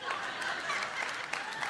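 A 4th of July weekend crowd claps in a loose, scattered way, with a few sharper individual claps standing out over a steady wash of hands and faint murmur.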